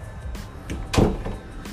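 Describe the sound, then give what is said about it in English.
A door swings shut with a single solid thud, preceded by a brief creak and rustle of movement, over a low background rumble. “All right, close the door.”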